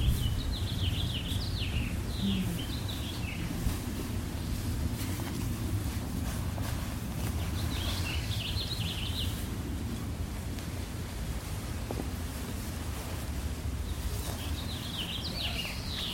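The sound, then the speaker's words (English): Birds sing in short bursts of high, twittering song, recurring several times over a steady low rumble of wind buffeting the microphone. “Feels like there's not much to add with the bird song and the wind that they could give the Dharma talk tonight.”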